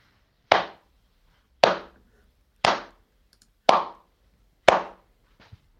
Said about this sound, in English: Some final business for you is that we've had some applause through. Here it is.